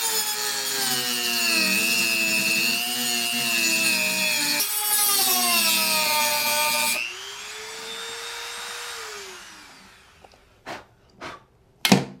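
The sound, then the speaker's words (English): A Dremel rotary tool whines steadily at high pitch while cutting off a peg, its pitch wavering under load, then winds down with a falling tone. A few sharp taps follow near the end. “So with Dremel in hand, let's just take care of this puppy.”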